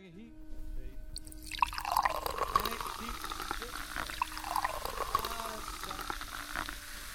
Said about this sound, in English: Let's open a bottle of champagne to celebrate.